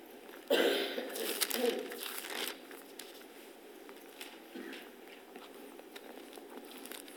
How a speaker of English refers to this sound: We all there? I see some pages turning. We're not in a hurry.